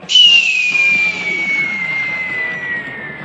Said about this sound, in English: Sounds like a missile. Illogical. Missiles cause explosions.